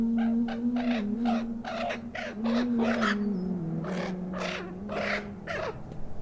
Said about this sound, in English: Then, as a mercy from Allah, and as a sign to retain Habib's dignity even in death, Allah sent down two ravens that began to fight.